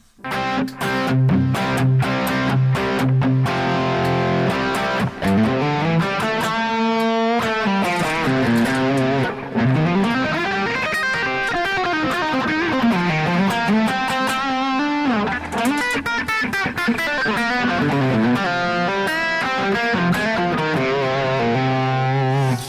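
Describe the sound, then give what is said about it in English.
Distorted electric guitar plays continuously through a Kemper amp modeler with quarter-note delay and spring reverb, with sustained, sliding bent notes and dense overdriven harmonics at steady, fairly loud volume, no talking. “This guitar is perfect for what I need it to do.”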